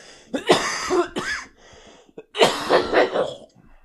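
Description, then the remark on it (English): A person with a tickle in the back of the throat coughs and clears their throat in two close bursts, harsh and raspy, with a brief pause between them; no speech, just the rough throat sounds. “We sat down at the table, and I immediately got a little tickle in the back of my throat”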